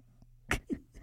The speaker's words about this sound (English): Bless you, lover. Bless you.